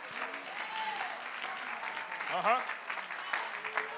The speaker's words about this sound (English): I wonder if we're in an apostolic church that doesn't mind being interrupted by the moving of the Holy Ghost, that you would right now clap your hands and begin to lift up the name of Jesus, because we need a move of God.